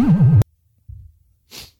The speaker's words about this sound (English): Thank you for the first sound being you blowing your nose.